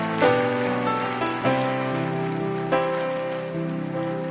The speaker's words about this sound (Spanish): Alguien que pueda aplaudir a Dios más fuerte, por favor.